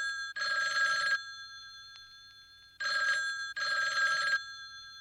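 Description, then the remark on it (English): An old-fashioned telephone bell rings three times at the start of a song, loud, with a long pause after the first ring and a short gap between the last two; each ring is a bright, rapid metallic trill. “And I think that starting with the phone like is very, very purposeful.”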